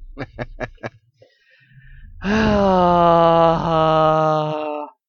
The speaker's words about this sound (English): That is the moan of a man in financial stress. That's what that sounds like.